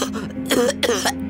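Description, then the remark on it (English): A man coughs several times in quick, rough bursts, fairly loud, with a throat-clearing quality and no talking. “Then he started coughing.”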